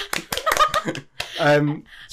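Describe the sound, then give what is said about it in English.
A few quick, sharp hand claps in an uneven burst, celebrating news of a new copywriting job, mixed with voices and a drawn-out vocal exclamation that follows. “You're supposed to clap as well.”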